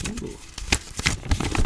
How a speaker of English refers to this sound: All right, I'm gonna open it right next to the mic so you can hear the paper ripping.